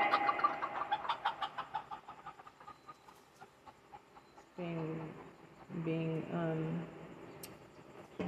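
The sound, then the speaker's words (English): Large chickens squabble with chicks, one big chicken being rough with a chick: a quick run of rhythmic clucks and pecks fades out, then two loud, harsh squawking bursts break out, each lasting about a second. “One of the big chickens being rough with one of my chicks, babies.”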